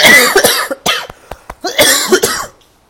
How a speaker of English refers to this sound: Hey, why you cough, …?